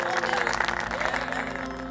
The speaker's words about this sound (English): The Yadavas supported him with a thundering applause.